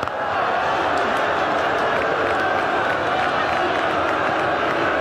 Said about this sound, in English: Well, there's a little bit of booing going on here, but I really don't think they know what's happening.